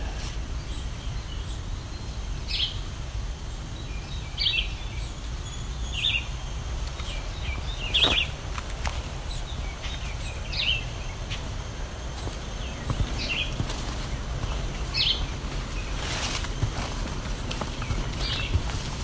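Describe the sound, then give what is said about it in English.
A red-eyed vireo sings short, separate phrases about every two seconds, slow and repetitive, over a steady outdoor hiss and low rumble, with no voices. “That's the red-eyed vireo. Very slow, repetitive song.”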